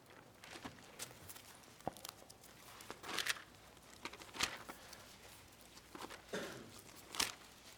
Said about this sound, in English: There's that beautiful sound again, Bible pages turning.